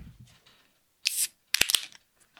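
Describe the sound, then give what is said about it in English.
Cans of Tranquility Base black IPA beer from Land Grant cracking open almost together: a bright hissing burst, then a cluster of sharp metallic snaps with fizzy spray, loud against an otherwise quiet background with no talking. “That was a wonderfully synchronized crack.”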